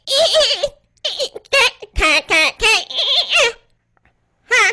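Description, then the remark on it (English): A voice imitates a fax machine with a string of squeaky, warbling vocal bursts, loud and choppy with short gaps, then a pause before one final screechy burst. “It's what I remember the fax machine sound like.”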